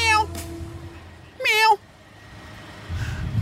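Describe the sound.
A person imitates a cat's meow twice in quick succession: a short mew at the start, then a louder, drawn-out meow in the middle, over a low background hum and rumble.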